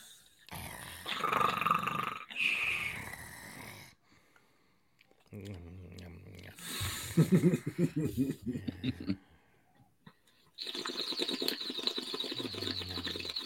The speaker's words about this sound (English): That was water. Just so everybody knows, I wasn't actually hitting a bong or anything.